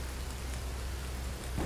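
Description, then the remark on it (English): Steady, dense rainfall hisses evenly across the whole stretch, a continuous wash of drops pattering on a surface with a low rumble underneath, moderately loud with no voices. “we have a ceiling fan, a box fan. We have rain sounds.”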